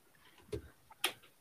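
Two crisp clock ticks, about half a second apart, sound clear against a quiet background with no talking.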